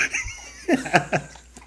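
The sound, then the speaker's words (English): A male dog laps up his water, a quick run of wet, rhythmic slurps spaced evenly apart, moderately loud after a brief quiet start. “Hey, enjoy the sound of my dog lapping up his water right now.”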